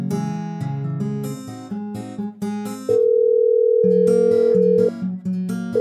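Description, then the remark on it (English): A prison telephone on a direct line connects with a steady electronic tone that holds loudly for about two seconds, set among a run of plucked, music-like notes before and after. No one speaks. “Use the phone over there. It's a direct line to Thomas.”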